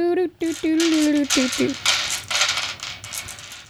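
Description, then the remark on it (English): Dice rattle and clatter in quick, uneven bursts for a few seconds, while a voice makes wordless sung or hummed tones during the first half. “I'm flaunting my dice at you.”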